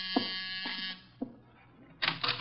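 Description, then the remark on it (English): A doorbell buzzer sounds in two bursts, a harsh, steady electric drone lasting about a second, then a shorter buzz after a pause, with a few soft clicks between them. “Door, Archie. Yes, sir. I hear it.”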